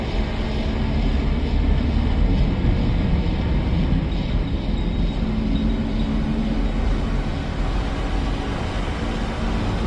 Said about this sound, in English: I want to talk about how the opening of this opening of this movie started with some rolling engine sounds.